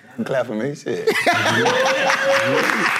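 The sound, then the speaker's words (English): A short burst of voiced laughter gives way to dense, steady hand clapping mixed with chuckles and overlapping voices, fairly loud for a few seconds. “Clapping me, shit. That's something bad.”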